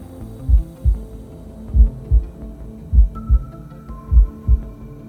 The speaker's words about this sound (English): And now that you are close to the tree and have your hand and your focus on it, you also hear that faint heartbeat.